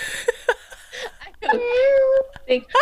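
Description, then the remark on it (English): A recorded human voice from a robotic toy cat gives a drawn-out, whiny meow, fairly loud, framed by a few short vocal bursts before and after. “It's the human voice saying meow for me.”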